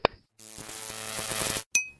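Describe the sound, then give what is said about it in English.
An electronic chiptune-style phone alert: a quick click, then a bright buzzy run of square-wave notes lasting about a second, ending in a sharp metallic ping. Clear, no voices. “Full chiptune. It's certainly distinctive.”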